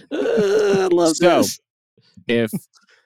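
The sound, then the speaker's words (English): Two sneezes: the first loud one comes after a long, drawn-out, falling voiced intake and ends in a sharp hissing burst. A shorter, quieter second sneeze follows after a brief pause. “Yep. Bless you.”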